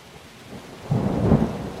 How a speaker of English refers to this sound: We wake up that first day of filming and it is a torrential downpour. It was raining so hard that the Masters Golf Tournament, which is played nearby every April, had to cancel their par 3 tournament